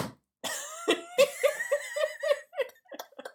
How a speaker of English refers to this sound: And you can't stop coughing into the microphone.